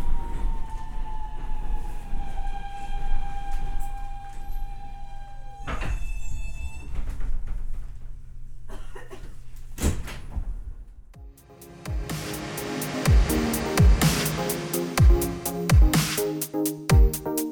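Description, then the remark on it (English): An A train subway heading uptown to Washington Heights hums along with a rising and falling motor whine, doors slide and thud partway through, then the car picks up speed over a steady rhythm of wheel clacks on the rails. “Just riding the train to the top of the subway map.”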